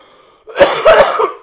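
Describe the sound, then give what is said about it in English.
A harsh, delayed coughing fit after taking a cannabis dab: a few rough, raspy coughs bunched together after a brief quiet moment, with throaty clearing in between and one last short cough at the end. “Fucking delayed dab cough.”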